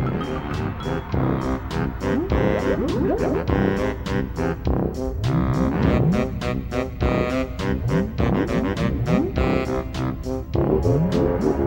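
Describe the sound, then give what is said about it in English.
Brassy orchestral video game level music for the fire side of Hellfire Peaks plays loudly and steadily, with full sustained horn-like chords over a driving, regular percussion beat and no voices. “In the case of Hellfire Peaks, we had a full sound with brassy tones on the fire side.”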